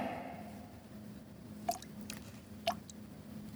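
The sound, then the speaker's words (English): A water spider stepping on water: a few faint, tiny watery ticks and drips, spaced irregularly over a quiet, low background hum, with no voices. “Did you hear? Water spider on tippy toe.”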